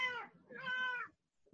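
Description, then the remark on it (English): A cat named Renesmee Michaela meows twice in quick succession, fairly loud, each call a drawn-out tonal whine, followed by a brief silence and a faint click at the end. “Fuck you, cat.”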